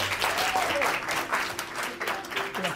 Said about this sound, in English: So everybody, please give me a huge round of applause for my friend, Gary Vee.